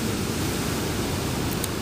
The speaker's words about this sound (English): It's actually quite, I wouldn't say calm. Some fairly big waves, but I think the tide is now going out. You can kind of tell by how the waves are breaking now.